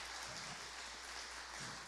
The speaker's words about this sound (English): Okay, let's give a round of applause for these brilliant answers. That was so good.